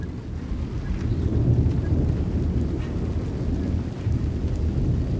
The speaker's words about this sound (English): Before we go, we get drenched by an evening thunderstorm. What begins as a drizzle turns into a downpour, drumming rhythmically on a metal roof.